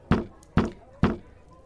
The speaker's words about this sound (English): After everyone has kind of settled in and taken a seat, you hear a sharp rap from a gavel.